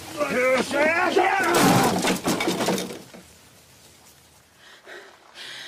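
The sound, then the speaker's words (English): A door is broken down on a sheriff's order, with a burst of loud splintering, cracking crashes lasting about a second, preceded by raised voices and fading into quieter scraping and clatter. “Break down the door.”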